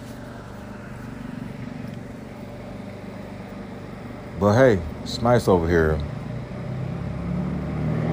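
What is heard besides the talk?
road traffic passing by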